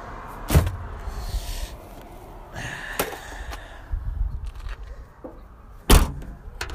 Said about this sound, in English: I'm putting the shovel in the trunk.